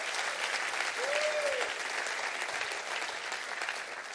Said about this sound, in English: Clap your hands and say, I'm with you, Pastor. I believe that.